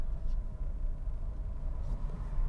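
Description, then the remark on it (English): A car that has just stopped right here idles with a steady low engine rumble, constant and fairly loud, with faint hiss and a couple of brief higher swishes over it; no one speaks. “Oh man, this car's just stopped right here.”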